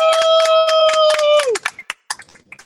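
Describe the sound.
A few people clap in quick, uneven bursts while a loud sustained whoop rings out and slides down in pitch, then scattered claps and brief voices trail off, as an audience applauds a group who went by bus across the Southwest opening underground libraries.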